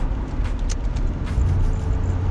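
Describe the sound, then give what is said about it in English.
Steady low rumble of a car moving through foggy traffic, with a constant engine and road drone filling the low end and faint passing whooshes above it, no voices. “We're in foggy traffic.”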